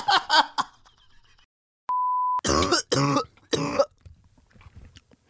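A man coughs in harsh, loud bursts: a quick pair at the start, then a steady electronic beep, followed by several more heavy, rasping coughs.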